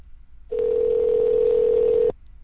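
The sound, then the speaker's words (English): A single steady telephone ringback tone on an outgoing phone call plays for about a second and a half, a clear mid-pitched electronic hum heard over the line, then cuts off abruptly. No one speaks. “Okay, at least it's ringing.”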